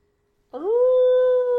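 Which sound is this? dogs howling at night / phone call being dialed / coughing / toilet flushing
dogs howling at night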